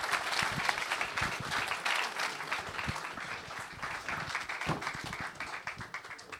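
An audience breaks into steady applause, many hands clapping in a dense, continuous patter that holds at an even loudness for several seconds without any voices.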